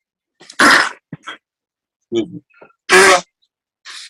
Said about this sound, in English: Yeah, blowing his nose all in my screen.